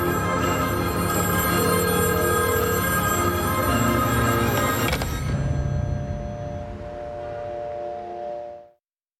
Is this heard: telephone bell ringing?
yes